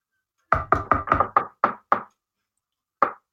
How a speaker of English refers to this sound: What were those two knocks? Eh? A knock. Two of them. Where are the two of them? On the ceiling. What do you think? At the door.